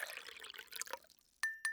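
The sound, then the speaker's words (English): Tea splashes and gurgles as it is poured for about a second, followed by two bright, ringing clinks of a spoon against a glass as the tea is stirred. “I almost spilled the tea again. We got to mix up some more tea.”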